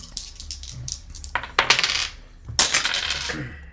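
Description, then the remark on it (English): Four dice, rolled for initiative, rattle and clatter across a hard surface in two quick bursts, preceded by a few light clicks, with sharp bright tapping and no voices. “Go ahead and roll four.”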